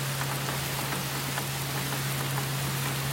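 Steady, light rain hisses softly with scattered droplet patter, easing toward a drizzle, while a low constant hum runs beneath it. No one speaks.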